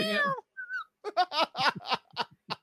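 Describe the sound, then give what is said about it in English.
A person imitating a kitty gives a high, drawn-out meow in a cat-like voice, then a short squeak, followed by a run of quick, choppy giggling syllables, all fairly loud. “Yeah, he's doing like a kitty. Not a cat. Cutest little kitty cat.”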